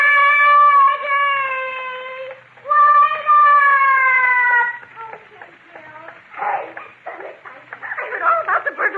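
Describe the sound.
Two long, drawn-out meows from a new kitten in the radio show Meet the Meeks, each lasting about two seconds with a steady, slightly falling pitch, followed by a few seconds of people talking.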